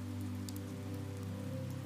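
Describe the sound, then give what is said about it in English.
Steady storm rain splatters on the earth in a soft, continuous patter, with a few sharper drip ticks breaking through over a low, even drone. Nobody speaks. “Calming Bedtime Story with Rain Sounds”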